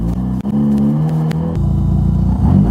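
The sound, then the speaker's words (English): A car engine revs loudly and accelerates, its pitch climbing, then shifting abruptly partway through as if changing gear before building again. No one speaks. “God, that L plate on that car.”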